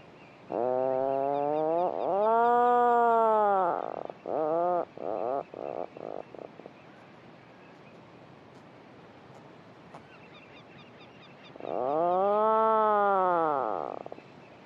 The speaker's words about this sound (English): birds calling and answering to each other from below the surface and within their burrows with this lovely, deep, rolling motorbike droning sound, which again they call and listen for a reply from their neighbour.